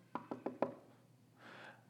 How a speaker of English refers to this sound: And the very guy that they're praying for, the guy that they're expecting to hear of his death, this guy shows up and knocks on the door.